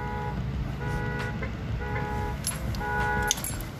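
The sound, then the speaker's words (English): A car alarm blares outside in repeating tonal bursts, steady and fairly loud over a rumbling low background of street noise, with a few sharp clanks mixed in. “I thought it was my car going off.”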